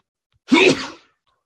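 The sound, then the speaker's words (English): A single sharp sneeze bursts out, a quick explosive blast that fades within half a second, with silence before and after. “Bless you. Thank Bless you. You again.”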